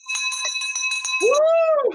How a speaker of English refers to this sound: Get ready for the school teacher bell yet again